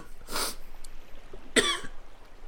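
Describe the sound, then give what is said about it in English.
Two loud coughs about a second apart from a person feeling under the weather, the first breathy and rough, the second harsher and more voiced, with quiet background noise between them and no talking. “You just cough nonstop for 30 seconds.”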